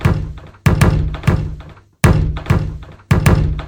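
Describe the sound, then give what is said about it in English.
Five deep, booming bass drum hits in an uneven rhythm patterned on the spacing of seagulls sitting on a wall, the first few evenly spaced and then a longer pause before the last. Each thump rings out and fades, with no voices. “I thought, that would make a great beat for my bass drum. Listen to this.”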